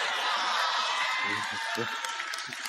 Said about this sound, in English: I want to hear you yell like LSU just beat somebody last night.